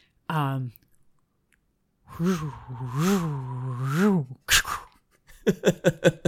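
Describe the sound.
A voice makes a noise to sum up the film Aquaman, imitating water lapping and then concentric circles communicating with animals: a short hum, then a long wavering, warbling tone, a breathy burst, and finally a quick run of about five wet, clicking pulses.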